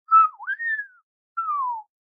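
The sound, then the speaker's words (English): A person whistles a two-part call, a wavering rising-then-falling note followed after a short pause by a single gliding descending note, clear with no talking. “And as she went, she made a whistle.”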